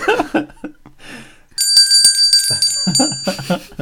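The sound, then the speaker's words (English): A bicycle bell, rung as a sound effect, rings out bright, its metallic tone lingering with a sustained shimmer, while people talk quietly before it and start speaking again as it fades. “Oh, that sounds like the insightful analysis bell.”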